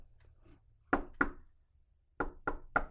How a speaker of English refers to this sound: I'm pretty sure the microphone's picked up me knocking on the table, but yeah, like, it did.